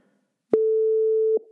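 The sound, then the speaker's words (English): A single steady electronic beep, a pure mid-pitched tone held for about 0.8 seconds with sharp clicks at its start and end, loud and alone with no talking. “That beep indicates we're about halfway through the episode, so if you're not walking a loop, you might want to turn around and head back now.”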